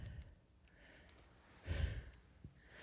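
A single forceful exhale of vape smoke after a strong vape hit, a breathy rushing puff, framed by quieter breathing and faint rustles before and after.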